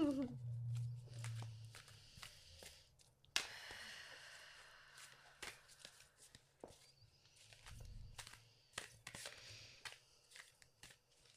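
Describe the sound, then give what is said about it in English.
Tarot cards being shuffled, a quick series of soft riffling snaps and papery flicks in uneven bursts, with a low hum underneath and no clear talking. “Shuffle it again.”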